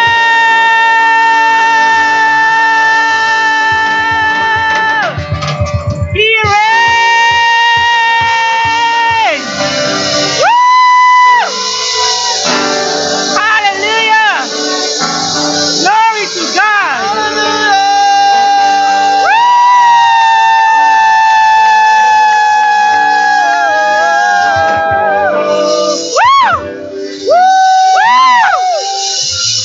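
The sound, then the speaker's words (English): A crowd of voices shouts and cheers loudly and without a break in the morning, with rising and falling cries and whoops layered over one another, energetic throughout. “So are you ready to do some shouting this morning?”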